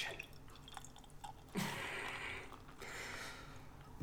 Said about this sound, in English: And just the sound. You know, the next pour, I'm going to hold it really close to the mic so we can just get a little ASMR.